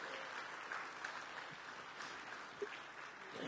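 A crowd applauds steadily, many hands clapping in a dense, even wash of sound that holds at a moderate level throughout, with no voices standing out.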